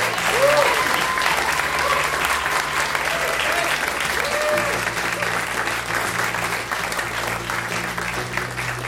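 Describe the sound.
An audience at a live recording at the Green Space in New York City breaks into sustained applause, a dense wash of clapping hands that stays loud and steady for the full stretch, with a few faint voices and cheers mixed into the crowd noise.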